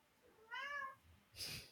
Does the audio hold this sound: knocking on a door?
no